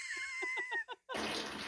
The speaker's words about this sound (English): That's a solid fart. Yeah, it's very long, and it's a journey. It takes a lot of twists and turns, this fart.